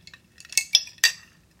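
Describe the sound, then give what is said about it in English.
A glass straw and a glass mason jar drinking glass clink together in a few bright, ringing taps, with a couple of louder strikes that shimmer briefly before fading. No one speaks. “Glass straw, glass mason jar drinking glass.”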